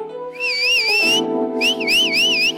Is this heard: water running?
no